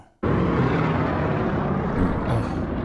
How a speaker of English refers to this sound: A B-17 ran into a P-36. These are both World War II era planes, and here's what happened.